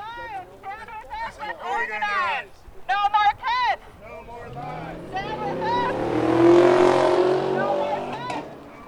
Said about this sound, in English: Guy just revved his engine, wasted all his damn gas.